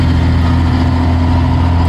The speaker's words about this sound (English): Loud truck guy. Hauling a Sea-Doo, and he's got wood hanging out of the back of his truck.